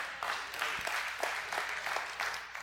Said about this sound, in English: You clapped because I used the word keister. So I just want to be clear about that.